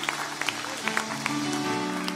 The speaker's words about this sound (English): Clap your hands one more time for the Lord and give him praise as Bishop Wilson closes us out tonight.